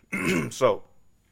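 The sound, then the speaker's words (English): A single throat clearing by a person who is ill, fairly loud, a rough voiced rasp with a sharper second push, then quiet. “So I'm going to be probably coughing and clearing my throat a lot during this.”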